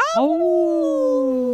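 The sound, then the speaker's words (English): A loud, sustained wolf-like howl imitated by people's voices, starting with a quick dip and swoop up, then holding a steady, slowly falling tone for over a second without any talking. “Now everybody, howl like the wolf.”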